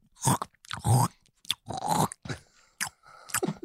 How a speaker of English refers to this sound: Do I make noises eating?